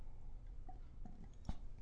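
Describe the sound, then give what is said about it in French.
Quiet mouth sounds from someone taking a small sip of water: a few soft wet clicks and a slightly louder gulp near the end, with no talking. “Voilà le texte que nous avons sur notre table ce matin et que nous allons considérer après une petite gorgée d'eau, si vous me le permettez.”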